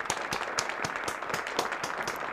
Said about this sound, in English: I'm gonna clap.